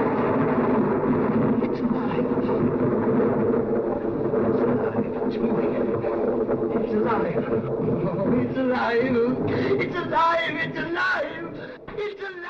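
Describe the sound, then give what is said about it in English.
A continuous, loud rumbling roar of thunder, originally added to mask part of an old film scene that was restored in 1986, runs through the whole scene, washing over voices that rise into higher, strained cries toward the end. “The scene was restored in 1986, but you can tell where they originally tried to mask it with thunder.”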